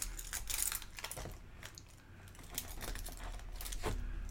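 Metal car keys jangle and clink repeatedly in bright, irregular bursts, fairly loud, with a low steady hum underneath and no talking.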